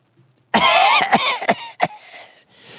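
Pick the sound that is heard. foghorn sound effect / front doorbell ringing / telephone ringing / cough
cough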